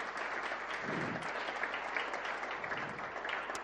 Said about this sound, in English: I think that's deserving of a clap, wouldn't you say?